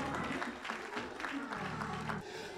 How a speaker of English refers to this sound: And together let all of God's people loose hand and come on, let's give them another hand clap of praise.